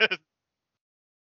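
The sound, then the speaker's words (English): A brief bleating herbivore dinosaur call from a film: two quick, bright, nasal pulses lasting a fraction of a second, followed by silence. “Wait, that sounds like we got our herbivore.”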